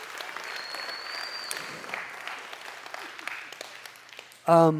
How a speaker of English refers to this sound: Okay, don't clap anymore, because you're taking up my time.